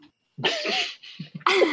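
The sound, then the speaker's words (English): A person coughs in a few rough, raspy bursts: a long hacking cough, two short ones, then another strained, throaty cough, voicing a wounded character lying on the ground who coughs up blood. “on the ground behind you cough, and there's clearly blood on the ground”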